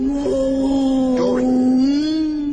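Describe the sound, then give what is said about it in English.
A person imitates an orca-like whale call with one long, loud, wavering wail, a steady droning moan held for a few seconds and bending slightly in pitch, with no talking around it. “Didn't that sound a little orca-ish?”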